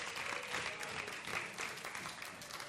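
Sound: audience applause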